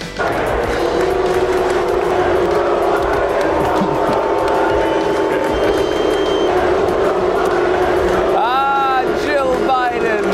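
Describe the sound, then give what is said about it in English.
A large stadium crowd of Philadelphia Eagles fans boos Jill Biden during a game in a steady, loud, low roar that holds throughout, with a few shrill whistles and shouts rising out of the din near the end. “Yeah, Jill Biden being booed by a stadium full of Eagles fans during the game last night.”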